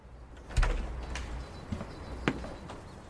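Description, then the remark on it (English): An unlocked door opens: a dull thump of the latch and frame, followed by a few scattered clicks and light rattles over quiet surroundings, with no voices. “your door was unlocked.”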